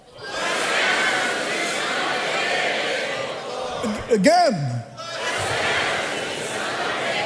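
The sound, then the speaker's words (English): An audience split into two sides roars and shouts continuously on a speaker's cue, acting out a crowd's noise, at a loud, steady level; midway, one voice calls out sharply over a brief lull before the crowd's noise swells back. “There's a crowd of noise.”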